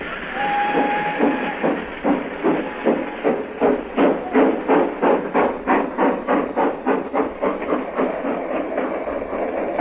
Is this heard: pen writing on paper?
no